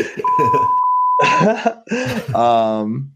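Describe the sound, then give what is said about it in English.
A steady, high censor bleep tone lasts just over a second, cutting across speech; talking continues around it and ends with a drawn-out vocal exclamation. “Ooh, beep, beep, and beep.”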